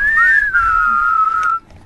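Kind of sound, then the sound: human body sound, person whistling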